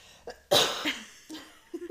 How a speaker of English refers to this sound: Sorry, hold on, I have to cough.